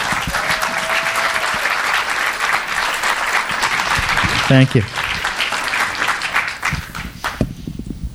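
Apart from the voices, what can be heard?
audience applause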